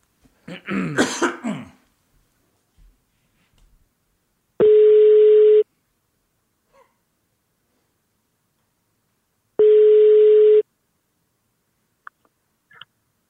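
A telephone ringback tone sounds twice, each a steady one-second beep separated by a long pause, clear. A cough and throat clearing come just before, with no talking.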